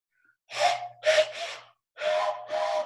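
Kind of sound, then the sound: signal or alarm, train whistle sound effect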